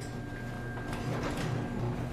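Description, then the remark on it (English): A newer garage door glides along on a belt-drive opener, producing a steady, smooth mechanical hum and soft rolling rumble with faint rattles, continuous and fairly quiet throughout. “So if you just want to focus on the door, the difference is now it's a way smoother operation.”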